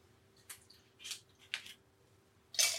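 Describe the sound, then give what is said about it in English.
Wine being poured into a glass in a few short, uneven splashes and glugs, quiet, ending with a slightly louder burst; no one talks. “Should we fill up our wine?”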